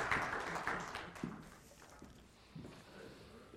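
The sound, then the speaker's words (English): A church audience applauds three people, a dense patter of many hands clapping that starts strong and gradually thins out and fades over a few seconds, with a few stray louder claps near the end. “Can you give a nice round of applause for our Obadiah, Zechariah, and Nebi?”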